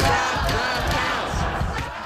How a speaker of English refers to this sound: Yeah, so this was the scene in Detroit. Protesters started banging on the windows, as you can see.